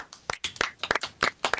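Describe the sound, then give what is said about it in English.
Brief applause for the ratings of the show Bleach: sharp hand claps land in a steady rhythm about three times a second, with softer scattered claps between them. No voices are heard. “Before we even start, applause for Bleach, please.”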